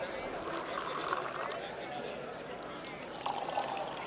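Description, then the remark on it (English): Organizers pour tap water steadily from heavy bottles into stemmed glasses for judges grading water samples, the rising ring of each glass filling heard twice, over a soft murmur of background voices. “The organizers pour water from heavy bottles into stemmed glasses before handing samples from cities large and small to each of the judges, who are grading them on a scale of 1 to 10.”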